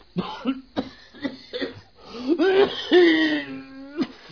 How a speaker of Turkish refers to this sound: Bak öksürüyorsun. Doktora ihtiyacın var.